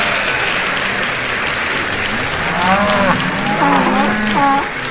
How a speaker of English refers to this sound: Here comes Mr. Trump. The crowd is going wild.